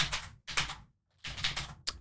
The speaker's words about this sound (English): Well, that's a lot of typing.